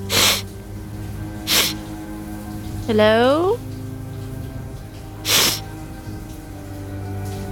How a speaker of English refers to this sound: You go into the third shower, turn the water on, and after a few seconds, you notice a sniffling sound coming from the shower next to you.